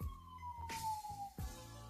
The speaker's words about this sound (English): Oh. I'm hearing the sirens, beloved. It's time to go. I'm going to take that as a sign. I'm hearing the sirens.